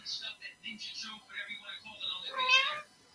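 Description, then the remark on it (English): A cat meows repeatedly, drawn-out and moderately loud, with the longest, strongest yowl near the end before it falls quiet. “And the cat made me laugh tonight. Okay. Oh, you heard him? I got a cat here and here.”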